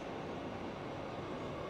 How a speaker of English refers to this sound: And that will be the last time I describe the MTA as mystical. This is just the F train. It is, and it isn't.